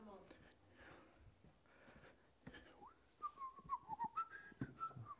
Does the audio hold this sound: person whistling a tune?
yes